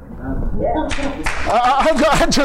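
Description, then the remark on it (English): A crowd breaks into scattered, steady clapping about a second in, the claps building into a dense patter while a man keeps speaking over them. “I just feel like clapping.”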